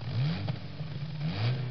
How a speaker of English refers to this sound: Cars, vroom vroom.